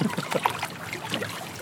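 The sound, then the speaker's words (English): Oars of a rowing boat dip and splash, a steady wash of water sloshing with a few sharper strokes standing out near the start. “Keep rowing”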